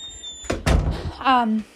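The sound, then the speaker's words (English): A door opens to let a dog in, with a couple of sharp wooden knocks and a rattling clunk, followed by a short, falling vocal sound. “Hold on, my dog's at my door.”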